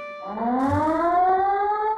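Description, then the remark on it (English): A loud perimeter alarm siren at the Palace of Nations winds up, its wailing tone sliding steadily higher in pitch and holding strong for about two seconds, with no voices over it. “Mon Dieu! The perimeter alarm!”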